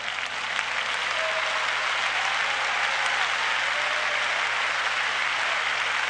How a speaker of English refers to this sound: I appreciate the 30% of you clapping your hands on that one. Bless God.